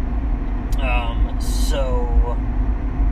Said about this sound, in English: That was a nice car.